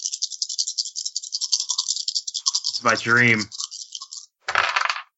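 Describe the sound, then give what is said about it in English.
Dice clatter and rattle steadily for several seconds, a voice speaks briefly over them, then after a short pause there's one more quick burst of rolling and landing. “Dice, what the fuck? Dice! Really?”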